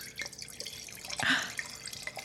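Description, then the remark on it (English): Dr. Dirklin Wolf 2015 dry Riesling wine pours into a glass, a steady trickle of gurgles and drips that swells briefly in the middle before easing off; no one speaks. “Okay, well, she's gonna do the ASMR pour for the first time.”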